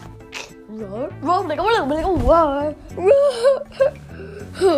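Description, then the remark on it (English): A voice imitates a baby creature's roar in a cave with a run of wavering, whiny cries that rise and fall in pitch, fairly loud, for about five seconds. “there was a baby roar in the cave.”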